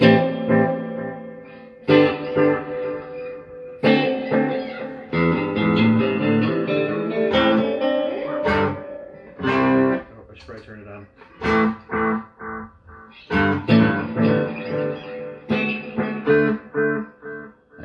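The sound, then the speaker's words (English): An electric guitar played through a delay pedal set to analog echo, with its tweak, tweeze and mix knobs at 12 o'clock: loud strummed chords and picked notes, each trailed by softly repeating echoes that smear the phrases together over several seconds. “actually pick analog echo because that one has more personality.”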